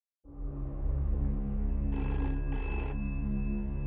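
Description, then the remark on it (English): A telephone rings loudly, a steady electronic ring with two brighter trilling bursts near the end, and no one speaking. It is Anne's daughter's phone, ringing the next morning while it is still dark outside. “It was still dark outside the next morning when Anne's daughter's phone rang.”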